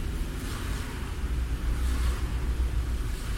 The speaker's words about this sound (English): So don't mind the traffic noise. It's pretty noisy, but it's all right.